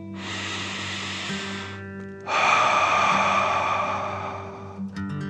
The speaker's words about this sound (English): Before we begin our story, let's relax with 3 deep dragon breaths. Breathe in through your nose, filling up your belly, and then out through your mouth, imagining you're breathing fire. Ready? Okay. Deep breath in and out.